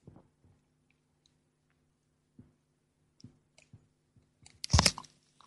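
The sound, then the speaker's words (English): A quiet sip of tea: a few soft clicks and small mouth or cup sounds over a faint steady hum, then one short, noisy slurp near the end. “I'm going to take a sip of my tea here.”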